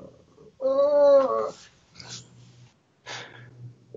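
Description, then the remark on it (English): A puppy growls in a strained, tonal cry lasting about a second, followed by two rough, breathy snuffling bursts, with no one talking. The puppy is inside a studio behind a closed door and wants out. “That I think that was my studio mate, Sonny the Action Puppy.”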